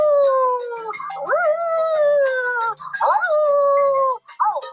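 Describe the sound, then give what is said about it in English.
A dog howls loudly, drawn-out wavering tones that rise and fall in several long swells, with brief yelping breaks between them and no talking. “We will have no howling, no screaming, and everyone be polite and quiet.”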